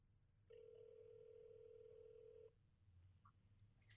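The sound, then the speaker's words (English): A single steady electronic ringing tone of an outgoing phone call sounds for about two seconds, clear and fairly loud over a low background hum, then cuts off, leaving faint noise. “It's ringing in case you can't hear.”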